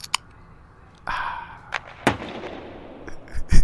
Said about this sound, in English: Yeah, no, it's a beer opening, a hockey shot, and then a hockey buzzer.